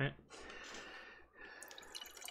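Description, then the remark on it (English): A canned red beer poured into a glass, a steady fizzy gush of liquid lasting a couple of seconds, briefly dipping before the foamy splashing picks up again. “This is the second red beer that I've poured tonight.”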